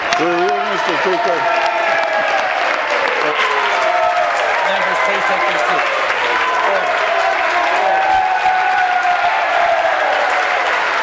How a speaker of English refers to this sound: Well, now, that is a rousing bit of applause for the Premier, and that is not just your standard issue progressive conservatives jumping to their feet with their standing oaths. No, that's actually the opposition side, the NDP, with a rousing cheer